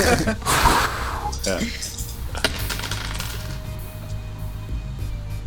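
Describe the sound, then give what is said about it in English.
A short breathy puff of air, followed by a few sharp plastic clicks and rattles as small dice tumble and clatter across a hard surface, with faint murmuring in the background. “What are they doing, like, casinos, and they blow on the dice, right?”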